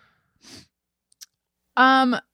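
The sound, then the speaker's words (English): A breathy intake of air and a small click, then a loud, drawn-out voiced yawn sustained for about half a second, with no talking. “Oh boy, here we go with the yawns.”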